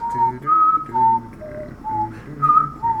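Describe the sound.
Several people whistle the Jeopardy think music together, the melody rising and falling in steady phrases, clear with no talking.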